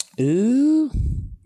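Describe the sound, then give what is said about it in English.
A drawn-out voiced exclamation gives way to a brief rattling clatter of new dice being rolled across a surface for a knowledge check, lasting about half a second before it settles. “Ooh, I got to use my new dice. I'm so excited.”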